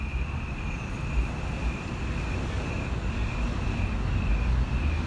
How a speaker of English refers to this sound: Cars are awfully close.